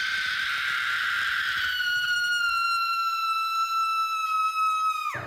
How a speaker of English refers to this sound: I woke up to a scream.